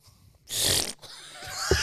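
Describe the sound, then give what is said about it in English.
A person imitates someone snoring while asleep with two rough, breathy snorts: a loud, harsh rasp followed by a longer, rattling exhale ending in a low grunt. No words are spoken. “Been funny if, like, she's asleep and she's, like, going, like...”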